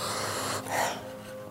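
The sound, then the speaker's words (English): A single soft, breathy sniff of a piece of wormwood, a short airy inhale through the nose that swells and fades within about half a second over a steady low hiss, with no talking. “It's the ceremonial sniffing of the wormwood.”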